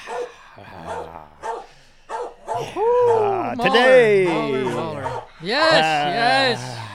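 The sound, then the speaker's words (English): Mahler, a dog, barks and growls in a run of loud, drawn-out vocal bursts, the sounds rising and falling in pitch with short gaps between them. “And that's Mahler the carnivorous dog.”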